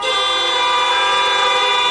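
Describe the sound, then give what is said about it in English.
Several car horns honk together in a sustained, loud chorus, overlapping steadily for the whole two seconds with no pauses and no voices. “Everybody honk all.”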